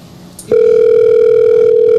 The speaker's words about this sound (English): let me call this caller, man. We had a caller call in. Let me see if I can get him on the phone.